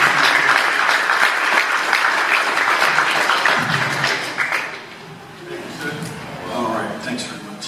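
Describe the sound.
A crowd breaks into loud, steady applause, a dense wash of many hands clapping that fades after a few seconds as a single voice begins speaking.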